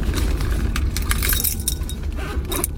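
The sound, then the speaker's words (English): Keys jangle in a quick, irregular burst of bright metallic clinks, shaking repeatedly over a low, steady background rumble as someone finds their keys on returning to their apartment in Beijing; no one speaks. “Found my keys.”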